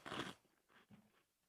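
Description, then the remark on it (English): A loud crunching bite into Cheetos Crunchy cheese puff snacks, followed by a few softer chewing crunches, with no talking. “Sorry, that was a delicious touch and crunching of the Cheetos Crunchy.”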